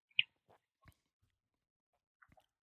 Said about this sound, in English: I'm drinking a sour apple sniper here. This is one of my standard go-tos. Oh my gosh. So here we go. First sip right on the pod. Okay. Here it goes.